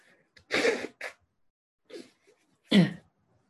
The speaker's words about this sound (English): Sorry, I'm just going to blow my nose.